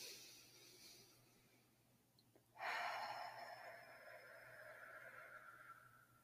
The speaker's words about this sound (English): So let's just take a deep breath together.